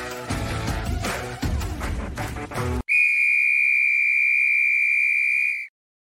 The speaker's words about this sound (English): There's the whistle. It's time to start Belly Up Fantasy Live.